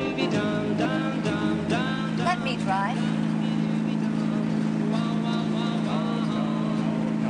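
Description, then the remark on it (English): A car engine with a heavy clutch runs steadily with a low, constant drone throughout, while voices talk over it. “Takes a lot of strength to depress this clutch.”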